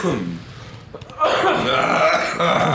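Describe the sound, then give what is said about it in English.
A person breaks into a loud, raspy coughing fit after smoking a cigarette and weed, following a brief quieter moment, the rough hacking continuing steadily through to the end. “Me cough.”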